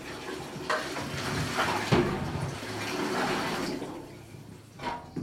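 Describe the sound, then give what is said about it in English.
Water cascading down to a river at about 2:30 in the morning roars steadily in a broad wash of noise, then thins and quiets toward the end as the flow subsides after gates are closed, with a few brief splashing surges along the way. “Slowly, the cascading water and its roar down to the river is subsiding.”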